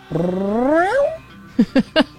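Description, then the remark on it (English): A chubby, hungry cat meowing for food lets out one long, rising, drawn-out meow, then three short, sharp chirping meows in quick succession, fairly loud with no talking. “Food? I guess so. You're hungry? Must be. That's a shocker. Yeah. Chubby cat.”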